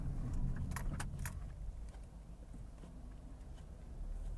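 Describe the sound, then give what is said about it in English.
Steady low engine and road rumble from a car in motion, with a brief bright jingle of metal rattling early on, then the drone continuing evenly. “This had a car pull straight out in front of me.”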